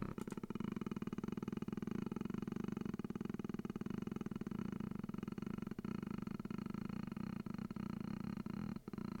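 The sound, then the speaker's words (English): A person imitates a cat's purr with a low, steady throat rumble, throat held up to a microphone, held continuously for several seconds, fairly loud, with no talking over it. “Now, specific to this, I don't know if they're talking about either the like the low throat rumble, the.”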